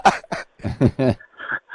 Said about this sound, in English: I've been sitting here at drinking this coffee. And, sorry. Yeah, I'm just clearing my throat because, you know what... bloody milk and cream and stuff does, yeah.